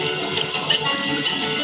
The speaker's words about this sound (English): We created a water fountain that looks just like an ordinary water fountain, except that it's designed with a new technology. When your lips touch the water, it completes a circuit and triggers pre-recorded audio.